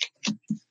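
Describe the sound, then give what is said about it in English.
Tarot cards are shuffled for a reading about Washington, D.C., in three quick, crisp, evenly spaced bursts with short pauses between them and no one talking. “I'm shuffling to D.C. right now.”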